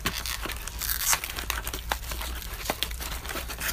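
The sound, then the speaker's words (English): A pull-tab on the cardboard box of an Apple Pencil being torn open, a run of crackly, ripping cardboard sounds with a few sharper snaps, steady for several seconds with no talking. “There's like a tab to open the other box.”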